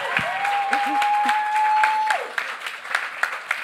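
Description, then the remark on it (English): An audience at a live gig breaks into steady, lively applause for a man coming up from the crowd, many hands clapping, with a sustained whistle-like tone and a few cheers rising over the clapping early on. “Give him a round of applause, everyone!”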